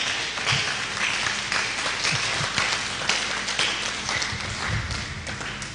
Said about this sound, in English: If you are clapping, clap.